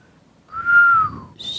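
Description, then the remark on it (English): A single breathy human whistle glides slowly downward for about a second, airy, with a soft hiss of breath underneath and a brief higher whistle starting at the end. “Because I heard a whistle earlier and I was like, why so breathy? It's very airy.”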